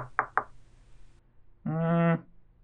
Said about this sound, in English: Okay, I go upstairs and knock.